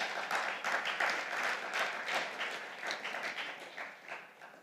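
An audience bursts into a round of applause, many hands clapping in a dense, steady wash that holds for several seconds before starting to thin out toward the end.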